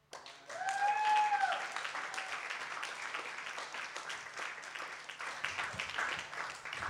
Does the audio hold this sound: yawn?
no